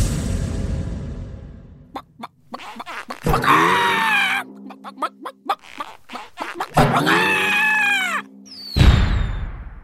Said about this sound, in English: I've always wanted to hear a chicken wearing bouncy shoes. And so you shall. Sound explosion.